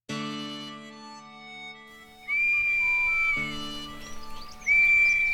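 Two shrill, sustained blasts on an Acme police whistle sound after a ringing, fading tone, the first held about a second and the second shorter. Both are loud, with no one talking.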